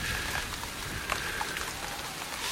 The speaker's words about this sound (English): Shielding his eyes and peering into the darkness, Link felt the bite of the rain on his cheeks as he searched for signs of his uncle.